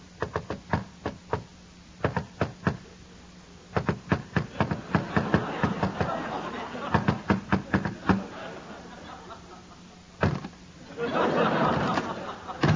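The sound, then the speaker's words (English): Sharp knocks on a door rap out a secret knock in an elaborate rhythmic pattern of quick bursts and pauses, running for about ten seconds before a voice briefly speaks. “Open the door. It's me, Crookley. Then give the secret knock.”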